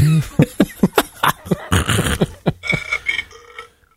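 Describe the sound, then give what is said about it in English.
A musical birthday greeting card plays a man's voice burping a rapid series of short, loud belches in a rhythmic, tune-like pattern, with a slightly tinny, small-speaker quality, lasting a few seconds before trailing off. “What was that, some guy burping?”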